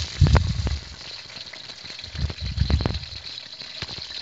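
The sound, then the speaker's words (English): A couple of chicken breasts dropped into warm oil sizzle in a skillet over about medium heat, a steady crackling hiss with two louder bursts of low thumping and spattering early and midway, with no talking. “Ooh, I can hear that sizzling.”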